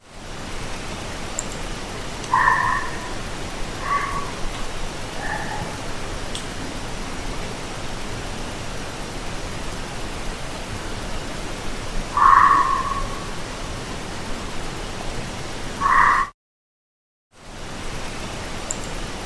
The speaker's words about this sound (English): So we captured some barks as well, and I think these are likely foxes now that I listen back to them.